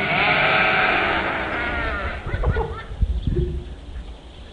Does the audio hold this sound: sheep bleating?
yes